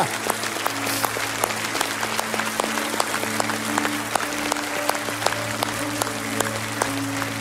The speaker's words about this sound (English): Now, church, as they're going out, we can keep clapping for them.